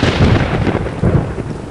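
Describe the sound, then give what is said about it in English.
A loud thunder crash rumbles heavily through the low end, sustained with rolling bursts and a hiss of rain-like noise throughout, no voices present. “Xuanyuan Dapan soared into the sky, and the thunder struck him.”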